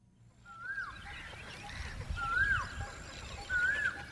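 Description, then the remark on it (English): Hundreds of birds calling in and around a pond on the northern edge of Delhi, India's capital region: a clear whistled call rises and falls three times at steady intervals, with fainter chirps scattered among a low, rumbling background hum. “The cacophony of hundreds of birds gathered in and around a pond on the northern edge of India's sprawling capital region.”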